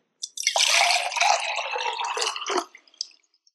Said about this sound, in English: Okay, number one. That's my drum roll. Pour number one was hot water. Number two was cold water. Did you get it right?